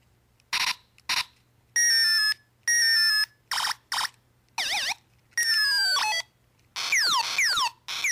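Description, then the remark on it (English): A tinny electronic siren from a button sound-effect keychain cycles through short 8-bit-style bursts: harsh buzzes, sustained tones, a quick warbling wail and rapid falling zaps, each separated by brief pauses, loud with no talking. “you remember the keychain things that you could buy, and they had the buttons on them where one sounded like you know, it was like an 8-bit sound, and then you had the siren that went, you know. Listen to this.”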